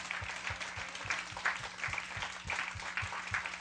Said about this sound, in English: That's a good clapping point right there, by the way.